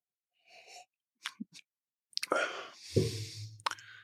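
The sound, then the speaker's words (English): A person takes a sip of strong whiskey: a quiet slurping sip and a couple of soft mouth clicks, then a sharp breathy exhale and a low, voiced sigh of satisfaction, ending with another short puff of breath. “But let me take a little sip.”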